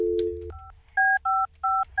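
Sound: telephone number being dialed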